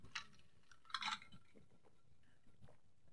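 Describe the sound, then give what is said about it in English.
A glass clinks twice, with a sharp tap early and a louder chink a second later, followed by faint sipping and swallowing sounds as someone takes a drink of water. “One last drink of water before I hit my five favorite mid-major programs this year.”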